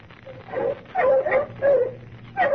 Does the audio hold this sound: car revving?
no